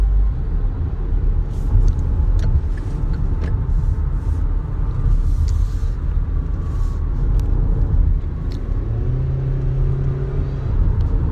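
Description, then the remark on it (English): A car drives through road traffic with a steady engine rumble and tire noise. Toward the end the engine pitch rises and holds, as if accelerating. No one speaks. “Now, here I am trying to get up in traffic.”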